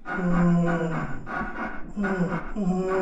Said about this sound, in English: And there's this weird creaking sound.